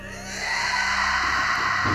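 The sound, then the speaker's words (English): A woman screams in rage, one long, loud, strained cry that swells within the first half-second and holds steady for about two seconds, with no talking around it. “raised her hands to the sky and screamed.”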